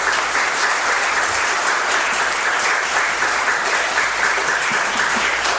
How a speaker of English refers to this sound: First of all, with regards to announcements, I'd like to give another rounding applause for our bell choir and our choirs who performed this morning with that beautiful music.